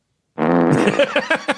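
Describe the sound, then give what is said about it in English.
A loud fart sound effect: one long buzzing blast that breaks into a few short sputtering puffs at the end, with no voices. “If Alan has a fart, this would be a great time to put toilet. One in.”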